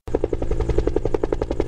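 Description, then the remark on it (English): A firefighting helicopter is heard at a demonstration of San Diego County's first helihydrant, a 5,000-gallon water tank for refilling firefighting helicopters; its rotor blades beat in a fast, steady thump-thump rhythm over a low engine roar, loud and continuous with no voices. “San Diego County's first helihydrant is now accessible to the region's fleet of firefighting helicopters to help combat wildfires.”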